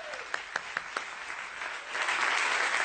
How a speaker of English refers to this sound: You can sit down. Thank you very much. Applause some more.